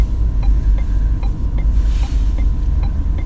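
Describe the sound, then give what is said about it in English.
A four-wheel drive truck revs its engine loudly in a deep, steady drone, with faint regular ticking above it and no one speaking. “We're all very impressed with you and your revving of your engine.”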